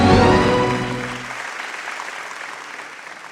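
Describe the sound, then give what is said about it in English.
An audience of the Redeemed Christian Church of God, Throne of Grace, Richmond Hills, claps steadily in a dense, crowd-wide wash of applause, with a sustained tonal sound fading away in the first moments before the clapping carries on alone. “Some of you are clapping as if you know why God loves you so much.”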